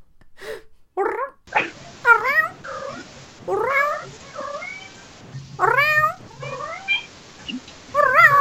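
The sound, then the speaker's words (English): A cat meows over and over, a quick run of loud, whiny calls with brief pauses between them, some rising and some drawn out, with no one speaking. “People want to hear a cat and a human talking.”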